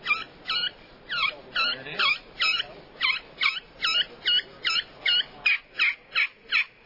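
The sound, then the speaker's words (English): A turkey kee-kee call played right up on the edge of the glass of a glass friction call known as a derringer: a steady series of about fourteen high, whistling, rising notes, clear, with no talking. “That's on a glass, and that's called a derringer. That Kiki's right up on the edge of the glass, guys.”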